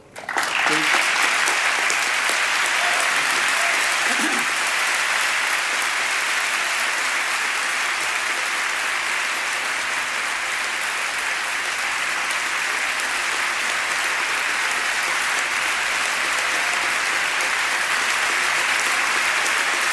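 Sustained applause from a large crowd fills the whole stretch, a dense, steady roar of clapping that holds a loud, even level from start to finish with no talk over it, recognizing a man's public service and his heroism in saving three women from a collapsed building.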